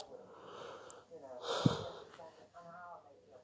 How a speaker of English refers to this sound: Sorry, I do apologise. I'm yawning my head off now. I'm going to get myself to bed soon.